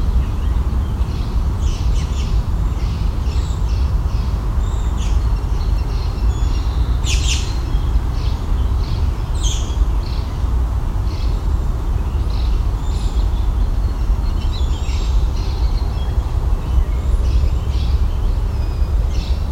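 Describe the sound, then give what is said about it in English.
A busy mixed chorus of songbirds, including cedar waxwing, house sparrow, warbling vireo, song sparrow and American robin, with overlapping chirps, high thin calls and warbled phrases over a steady low rumble of background noise; no one speaks. “A mix of cedar waxwing, house sparrow, warbling vireo, song sparrow, American robin.”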